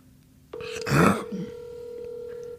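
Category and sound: signal or alarm, phone dialing tones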